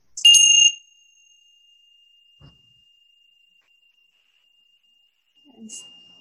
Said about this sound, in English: If I asked you, you know, I have a set of bells here that I use when I do online mindfulness. If I ask you, okay, just listen to the sound of the bells.